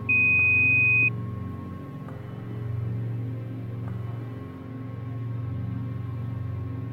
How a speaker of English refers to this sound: At the beep, provide the credit card information, or else.